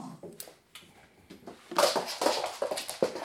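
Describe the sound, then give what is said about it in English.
A pit bull chihuahua mix whimpers in a string of short, whiny bursts, quiet and scattered at first, then louder and more insistent toward the end, with no one talking. “And that other sound you just heard is a pit bull chihuahua who doesn't want to be bothered by the German shepherd.”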